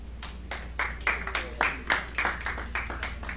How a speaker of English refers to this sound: And y'all give the Lord a good clap offering.